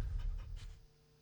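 A dog pants in a few quick, breathy huffs that fade out after about a second, with a low background hum underneath and no talking.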